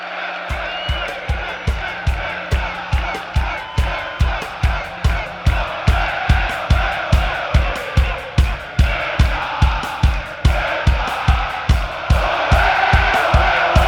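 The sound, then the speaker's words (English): A big stadium crowd chants Olé together over a steady, booming drumbeat pounding about three times a second, the massed voices loud and continuous throughout. “And I think that sort of, you know, after they stop a little bit after this, that sort of gets the crowd to get excited and get some big Olé chants to follow.”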